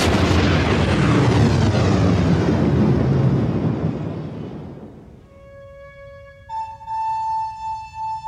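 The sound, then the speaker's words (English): A planet is shattered by a beam weapon: a massive, roaring explosion rumbles loudly for several seconds before slowly fading, giving way to sustained, ringing tonal hums at the end. No voices are heard. “And Alderaan is shattered for their eyes.”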